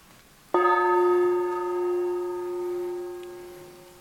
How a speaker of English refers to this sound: So sound the gong, and let's drop into our hearts.